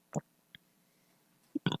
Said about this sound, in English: So I burped. If you heard that, if you were able to hear pretty good in this microphone somehow.